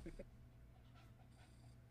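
A dog pants right up against the microphone, quick breathy huffs repeating in an uneven rhythm, loud and close with a low rumbling handling noise underneath.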